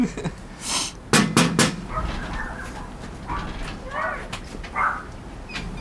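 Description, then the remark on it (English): Several loud, sharp knocks on a house's front door, knocking louder than before, come in a quick burst near the start, followed by a few high whimpering yips from a dog in the background. “Should I knock louder?”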